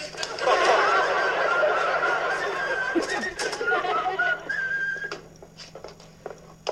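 Someone whistles a wavering tune while walking, over a busy, noisy background with chatter and laughter, then a few sharp footstep-like taps follow as the sound thins out.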